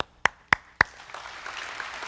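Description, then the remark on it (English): Three sharp, evenly spaced claps ring out, then a softer scattered patter of many hands spreads out as the audience claps on the speaker's request, continuing quietly to the end. “I would like everybody just to clap.”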